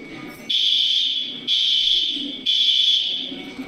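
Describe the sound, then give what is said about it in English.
A fire alarm, pulled by someone, rings loudly with a shrill, high-pitched tone in three sustained bursts, each restarting about once a second, while muffled voices murmur underneath. “He pulls the fucking fire alarm on them and then tells them they're fucking that's trolling.”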